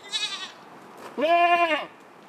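A goat bleats twice, a short, softer cry followed by a longer, louder, wavering bleat, with no voices around it.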